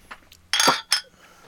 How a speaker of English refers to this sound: Who nailed their tooth with the bottle? That might have been me.